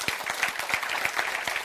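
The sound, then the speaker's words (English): A crowd claps steadily, many overlapping sharp hand claps forming a dense, continuous patter of applause at moderate volume with no voices. “And if you don't, I'm waiting while you clap your hands.”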